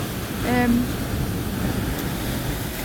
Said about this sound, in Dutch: Maar zelfs, ik moet even oppassen dat de zee niet te dichtbij komt.